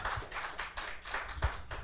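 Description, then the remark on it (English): An audience claps together in a steady rhythm, a crisp burst of hands landing roughly three times a second, loud and even, with no voices over it. “Let's go ahead and clap right there.”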